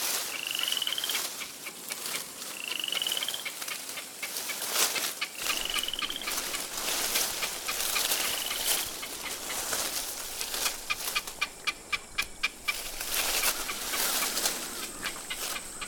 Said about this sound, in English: Well, I seem to only gain the attention of you crows. But what's that you're pecking at? In that tree?